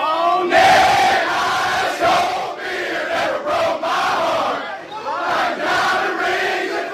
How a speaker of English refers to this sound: Laying App lumber. State by a million. Crowd just erupts. Oh, my gosh.